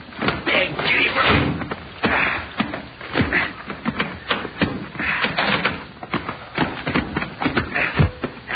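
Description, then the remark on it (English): A door opens amid shuffling footsteps, bumps and thuds as people carry an unconscious man through it to put him on a couch. “Now, let me out and I'll open the door.”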